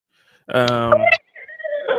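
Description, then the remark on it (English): A man's voice imitates a horse's neigh, a loud, wavering whinny followed by a shorter, breathier second burst, with no other sounds around it. “That's my horse rendition.”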